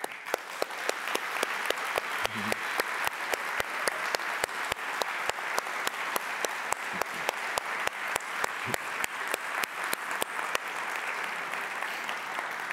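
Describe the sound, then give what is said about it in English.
A church audience applauds and cheers steadily for about ten seconds to honor standing veterans, dense clapping with sharp, regular individual claps standing out, a few faint shouts mixed in, before the clapping thins out at the end. “But veterans, would you honor us let us honor you by standing and just letting us cheer for you and give thanks.”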